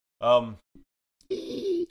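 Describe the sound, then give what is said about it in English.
A voice imitates rats gasping in a strained falsetto: a short breathy vocal burst, a tiny catch, then a longer, steady high-pitched breathy squeal. “the rats gasp in a falsetto.”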